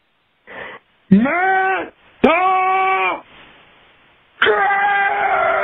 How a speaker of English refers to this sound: It's a good scream, too. I like it. It's mysterious. There's a lot of layers to it.